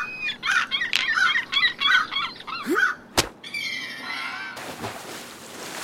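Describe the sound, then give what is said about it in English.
Harsh, repeated squawking from a pair of birds, broken by a sharp thump, then a higher strained cry and a rough, noisy rasp to finish. No one speaks. “We heard a pair of birds and it did sound like they were being hit with something.”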